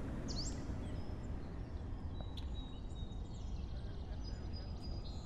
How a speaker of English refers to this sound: The birds had begun to sing by the time I got to the jail.